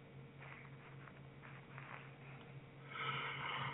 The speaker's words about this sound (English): Oh, man. Sorry. Excited? I had a bit of a yawn there.